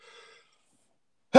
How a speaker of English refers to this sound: I think that was my first time sneezing on the podcast.